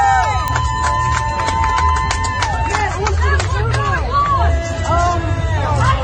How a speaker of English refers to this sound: People are screaming. They are excited for arresting this man for the sake of gospel.